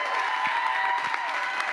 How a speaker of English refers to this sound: honoring him just because he's a guest speaker and we're going to stand up and clap. That's not why we're doing it.